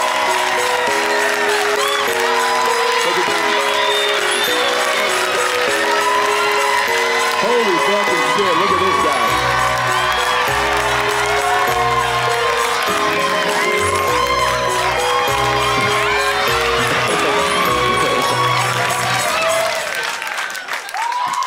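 A crowd at the Comedy Store claps and cheers loudly and steadily for about twenty seconds as a performer is introduced, with upbeat music and a bouncing bass line playing underneath the applause before it tapers off at the end.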